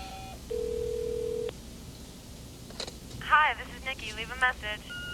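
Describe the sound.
Telephone keypad tones: a steady electronic beep holds for about a second, then a few short tones blip, followed by indistinct voice-like sounds over a quiet line hiss.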